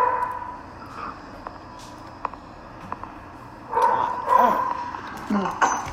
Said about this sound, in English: Got the dogs in the back.